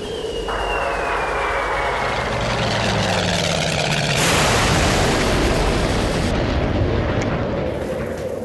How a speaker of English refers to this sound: What are those lights? A helicopter? Poppycock. I won't believe it.